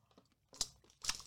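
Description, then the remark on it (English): Two loud crunches of someone biting into crispy cheese scoop snacks, separated by a short pause, with faint crinkly rustling before them and no talking. “Cheese scoops are pretty good.”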